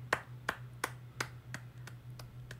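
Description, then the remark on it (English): A single person claps about eight times in a steady, even rhythm, the sharp claps growing a little softer toward the end, with a low steady hum underneath and no talking. The clapping is real, not an added sound effect. “Did you add that that clap? No, that was real.”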